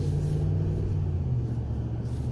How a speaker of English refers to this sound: How you doing, Landis delivery truck? Dropping off food items.